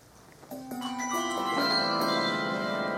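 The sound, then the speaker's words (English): Handbells ring in quick succession as a bell is rung from waist height up past the ear, five or six strikes whose bright, sustained tones overlap and build into a shimmering chord. Moderately loud, with no voices. “Ring the bell down here by your waist and then take it up past your ear and see at what point it's the loudest.”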